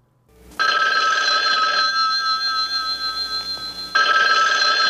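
An old-fashioned telephone bell rings loudly, a sustained metallic ring lasting over a second, a brief pause with fading shimmer, then the next ring starting, before Jim Rockford's answering machine message plays.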